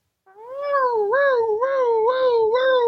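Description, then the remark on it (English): A voice imitates a police siren as Conrad Thompson heads to the ring: a steady wailing tone that rises and falls in pitch about five times over a few seconds, loud and continuous, with no other sounds. “It's a siren. Oh my goodness. Here comes a local police officer.”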